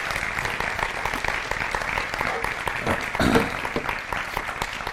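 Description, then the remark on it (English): Steady audience applause at a church service for the worship team and Hula Halau, a dense wash of many hands clapping at once, swelling slightly louder near the end with a few voices mixed into the crowd noise. “Can we give the worship team and Hula Halau another round of applause?”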